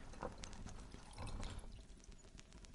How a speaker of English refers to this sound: poured the scotch